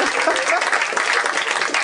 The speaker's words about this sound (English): Now applaud